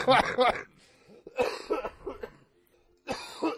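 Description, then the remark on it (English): A loud fit of harsh coughing comes in three bursts, the first quick and doubled, the middle one longer with throat-rasping coughs, then a final burst after a short quiet gap. “I'm sorry, I had a small coughing attack.”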